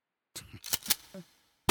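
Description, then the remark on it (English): A gunshot sound effect: a quick series of sharp, crackling bangs with a brief ringing tail, followed by a sudden louder blast at the very end. No one speaks. “The engineer gets a gunshot.”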